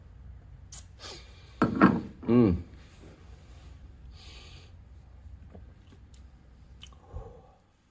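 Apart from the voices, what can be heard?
sipping a drink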